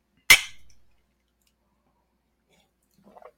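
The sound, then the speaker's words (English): A single sharp clink of teacups touching in a toast to Smokey, a dog, loud, with a brief ringing decay, followed by silence and a faint murmured voice at the very end. “Cheers to Smokey. Cheers to Smokey.”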